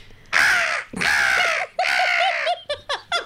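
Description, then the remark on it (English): A woman imitates a seagull: three long, loud, raspy squawks, then a quick run of short rising yelps, with no other sounds. “This is the seagull. The Victorian seagull. In D minor. No. Seagull goes up and down the scale.”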